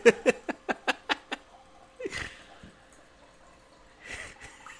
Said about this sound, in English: What the hell's going on in the background? Don't worry. What's your number four? I was pouring a glass of wine. Oh, okay. A big glass of wine.